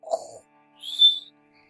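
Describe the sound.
A single loud, cartoonish snore from the wolf sleeping in the grandmother's house: a short low, rasping intake followed by a high, thin whistle on the breath out, with no talking around it.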